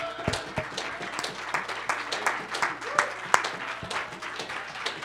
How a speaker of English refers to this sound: Someone give the Lord an uproarious hand clap of praise.